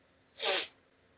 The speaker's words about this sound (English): And again, I apologize for the sniffles. I suffer from a physical condition that as the seasons change from warm to cold, my sinuses swell and begin to itch.